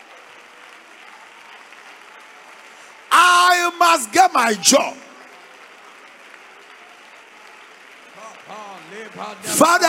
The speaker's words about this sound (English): Come on, clap your hands and release fire.